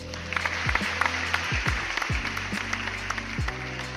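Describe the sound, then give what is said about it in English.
A burst of applause, dense and steady for a few seconds like a crowd clapping, with low descending tonal swoops repeating underneath. No one speaks. “Round of applause.”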